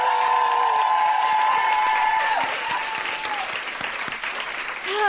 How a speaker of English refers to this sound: I think it's only fair that we give him a proper second round of applause, please.